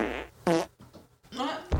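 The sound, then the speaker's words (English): A quick string of about four loud fart noises, each a short buzzy, sputtering burst separated by brief pauses, with no talking. “drop some fart noises.”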